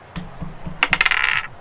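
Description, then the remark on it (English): Dice are rolled for a melee attack roll with advantage, clattering and rattling across a hard tabletop in a quick burst of sharp clicks, bouncing and settling within about a second, fairly loud with no voices. “Alright, so make an attack roll with advantage, because it's a melee attack.”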